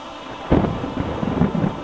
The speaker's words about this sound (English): Oh no, not the lightning!